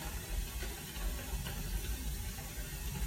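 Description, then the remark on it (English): Steady rain makes a soft, continuous hiss with a low rumble underneath, even and unbroken throughout, with no voices. “Can you hear the rain?”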